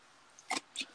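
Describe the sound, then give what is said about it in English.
Two loud, crisp crunches about a quarter second apart, bright and brittle like teeth biting through ice, with a third starting right at the end, over a low quiet background hiss. “What are you doing, crunching ice?”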